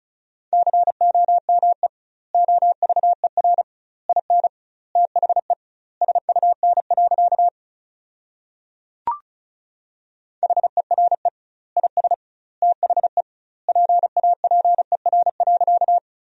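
Rapid Morse code at 35 wpm with doubled word spacing, sending sentences built from the top 300 words, a steady mid-high tone keyed into fast dots and dashes. The beeps come in word clusters split by short pauses, with one sharp click midway and no voices.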